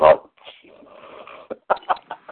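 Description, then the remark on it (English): A dog lets out a burst of short, excited barks and yelps while people wait to answer a quiz question, starting with one loud bark, then a whiny stretch, followed by several quick sharp barks in a row. “And Ann's dog is going nuts here as we wait to answer.”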